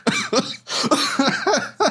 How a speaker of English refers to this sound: Yes, you made me laugh hard enough to cough.